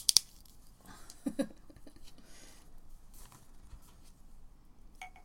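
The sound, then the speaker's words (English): A small bottle of Black Bush whiskey being opened: a couple of sharp, bright clicks as the cap twists off, a soft double knock, then quiet fumbling and a faint final tick. “Should we try the Black Bush now, which is, from my understanding, the more flavoursome of the two. Okay. Open the bottle.”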